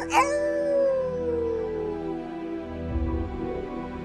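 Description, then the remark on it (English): A single wolf howl rises sharply, then slides slowly downward in one long, mournful tone, fading out over a few seconds with a low rumble underneath near the end. “The Wolf.”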